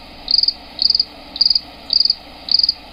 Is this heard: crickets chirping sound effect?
yes